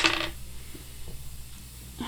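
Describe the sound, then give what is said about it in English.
Dice rolled for a stealth check clatter sharply onto a hard surface in a brief bright rattle, followed by a few faint, scattered taps as they settle. No one speaks. “I'm gonna roll a stealth to roll out from under the bed without her seeing me.”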